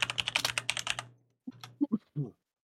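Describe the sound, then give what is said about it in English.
A quick burst of crisp computer keyboard typing as someone types "unholy music" into a search in a new browser tab, a dozen or so rapid clicks over about a second, followed by a short pause and a brief voice. “I'm just literally typing in unholy music.”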